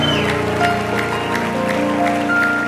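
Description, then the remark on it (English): A church audience gives the pastor and church family a steady, dense, continuous round of applause, with sustained musical tones, such as an organ or keyboard, held underneath the clapping throughout. “I think this church ought to give this pastor and this church family a great round of applause.”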